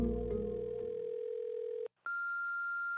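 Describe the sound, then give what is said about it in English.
A steady electronic telephone tone hums for nearly two seconds, cuts out briefly, then a higher, sustained beep starts, like a voicemail system signaling before a message. No voices are heard. “A few weeks after that, I received this voicemail.”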